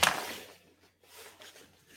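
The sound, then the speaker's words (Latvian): Someone unscrews an old vape coil to take it off: a short gritty scrape at the start, then faint intermittent grinding and twisting noises of threads turning, with no talking. “Skrūvējam vaļā veco, ņemam nost.”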